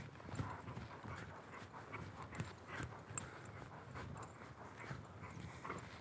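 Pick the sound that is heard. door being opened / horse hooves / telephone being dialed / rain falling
horse hooves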